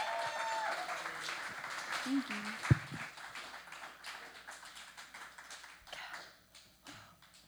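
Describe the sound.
A crowd applauding a musical duo after their grand finale, in a steady, dense wash of clapping, with a brief whoop and one sharp knock early on, voices faintly mixed in, and the clapping thinning slightly toward the end.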